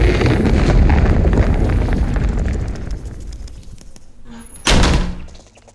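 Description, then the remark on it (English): A heavy tower door slams shut with a single loud, sharp bang near the end, its boom lingering briefly. Before it, a deep roaring rumble slowly fades away. “This tower is rather drafty. Do close the door as you go.”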